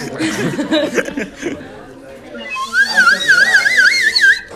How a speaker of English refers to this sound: I'm gonna give you a slide whistle solo.